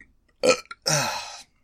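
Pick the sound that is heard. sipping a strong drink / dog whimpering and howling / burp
burp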